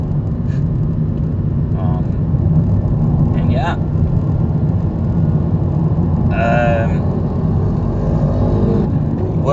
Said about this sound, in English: Motorcycle man. Let's see, we're in Fremont now, so almost to Union City here.